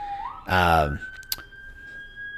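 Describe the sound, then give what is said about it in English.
An emergency siren wails from the street outside an office, a steady tone rising and holding, while a brief burst of voice cuts in over it; the siren keeps going. “Here's the benefit of me having my office on this street. Always sirens going.”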